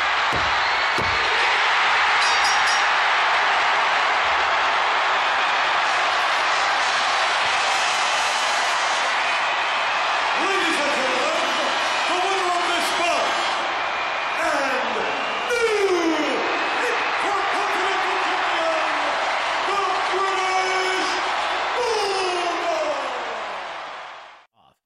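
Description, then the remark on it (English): A huge crowd at a wrestling match at Wembley in England roars continuously, dense and loud, with rising whoops and swelling cheers surging through the sustained din before it cuts off at the end. “Also, the crowd sensation in Wembley compared to what happened in Your House is night and day.”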